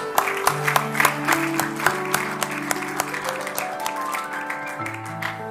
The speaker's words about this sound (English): If you want to clap, go ahead and give it.